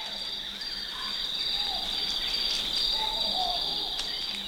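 At dawn on a 300-foot-high cliff deep in a forest in Zimbabwe, near the Mozambique border, a dense, unbroken drone of insects fills the air, steady and loud, with a few faint bird whistles and chirps; baboons and amphibians join the chorus. Recorded by Bernie Krause. No voices are heard.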